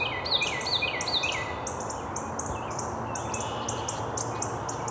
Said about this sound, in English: Another Carolina wren up ahead. Here's our Carolina wren.